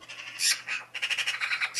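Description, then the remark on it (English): A magpie squawks in harsh, raspy bursts, several rough calls running together into a rapid chatter, clear with no voices around it. “So, okay, past episode, if you doth recall, magpies, does that ring a bell?”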